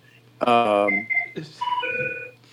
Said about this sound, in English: Guess what that is? That's the church phone